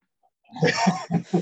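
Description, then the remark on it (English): A short fit of rough, throaty coughing from someone with a cold: four quick bursts in about a second, raspy and fairly loud, with no talking around them. “I'm sorry, I've got a bit of a cold. Don't worry, just change that cough for a sound effect of, like, Christmas ghostliness.”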